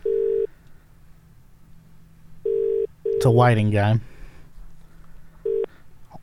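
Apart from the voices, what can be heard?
telephone call ringing tone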